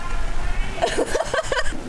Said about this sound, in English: Oh my goodness. It just started raining a lot.